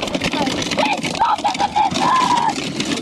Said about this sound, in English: Oh, the car won't start.